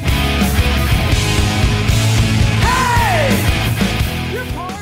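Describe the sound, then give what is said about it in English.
A heavy drum tom fill builds halfway through the second chorus of a loud, dense rock mix, with booming repeated hits, with lots of room or reverb on the toms, carrying on under distorted guitars and a yelled vocal line that slides in pitch. “Halfway through this chorus, though, there's a da da da da da da. It's a tom buildup.”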